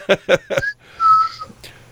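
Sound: person imitating a whistle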